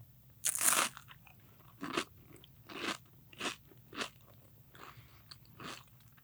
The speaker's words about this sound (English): So we're going to crunch now. Yeah, this is the cracker.